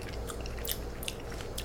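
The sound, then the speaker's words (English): Soft, wet chewing of canned sardines packed in water, with soft bones. A few brief squelchy crunches are spaced irregularly over a low steady hum. It is fairly quiet, with no one speaking. “The bones are soft enough, but that's slightly unpleasant.”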